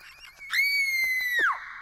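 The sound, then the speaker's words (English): A short, shrill scream rings out for about a second, a single sustained high-pitched cry that drops off sharply at the end, loud with no talking. “You see, that's a quick scream.”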